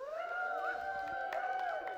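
A church audience cheers for the youth group for about two seconds, a steady wash of crowd noise topped by a sustained, high whoop that holds throughout, fairly loud and unbroken.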